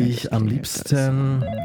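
A telephone rings with a short, buzzy melodic tune: a few sustained tones stepping up and down in pitch, fairly loud, with no talking over it.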